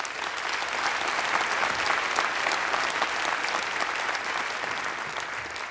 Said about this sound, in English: Great idea you've clapped for, right?